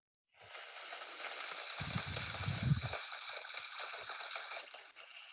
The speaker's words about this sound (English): Could you identify what is that sound? Is that water? Yeah. And how does it make you feel? It makes me feel like it has been raining, a little bit moody, a little bit blue.